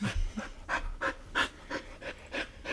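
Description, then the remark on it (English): A dog named Briscoe pants heavily into the microphone, a steady run of about eight quick, breathy huffs with no talking. “He's just panting very heavily into the mic.”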